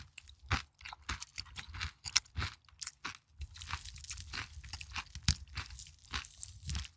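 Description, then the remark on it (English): Crunchy chewing of food by a man, with irregular bites and mouth noises, loud, continuing steadily for several seconds with no talking. “Him chewing in my ear right now makes me want to run through that fucking wall.”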